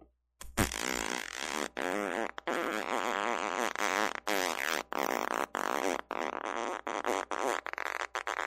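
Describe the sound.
A voice imitates a long, low-pressure fart, a continuous buzzy sputter lasting several seconds with brief breaks, loud, with no other talking.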